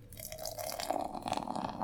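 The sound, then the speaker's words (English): Beer pours steadily from a can into a glass, a continuous splashing gurgle with a fizzy crackle building as it fills, no voices over it. “And the pour.”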